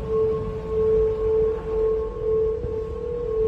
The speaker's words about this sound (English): Now it's something people in the Bay Area can hear. Turns out on a windy day, the bridge now hums. What's that eerie sound coming from the Golden Gate Bridge?